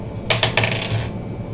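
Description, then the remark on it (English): Dice rolled for a stomp check in a game clatter onto a hard tabletop: three quick, sharp clicks, then a brief bright rattle as they tumble and settle, fading within about a second over a faint low hum. “Yeah, roll a stomp check.”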